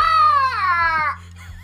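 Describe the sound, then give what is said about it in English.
A person gargling on something makes a strained throat noise: a single voiced, wavering sound about a second long whose pitch sags downward, then it cuts off, leaving a faint low hum. “That was a hawk in its gargle, death throws there. That was, I gargled on something there.”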